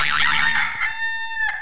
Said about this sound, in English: Rooster.